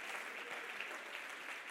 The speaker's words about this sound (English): Clap your hands and say, help is coming. Help is coming. Help is coming.